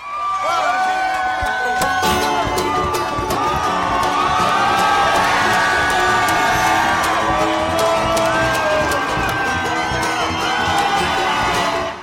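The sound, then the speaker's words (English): A crowd of about 1,500 at a Bernie Sanders rally screams, whoops and cheers continuously on the steps of a Civil War monument in downtown Indianapolis, in the rain, as Sanders comes into view; a dense wall of overlapping voices, loud and sustained, with piercing high shrieks rising above the roar. “There were 4 straight minutes of screaming.”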